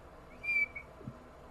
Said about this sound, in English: I like to whistle, okay? I can't whistle.